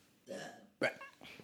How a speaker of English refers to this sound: And burp again.